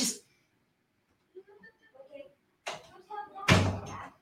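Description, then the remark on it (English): A door shuts with a solid, fairly loud thud near the end, preceded by a short sharp noise and faint, muffled voices in the background. “Please close my door.”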